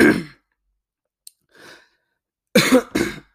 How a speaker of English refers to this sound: Sorry. I don't know what this whole coughing a billion times and pausing is about. Sorry.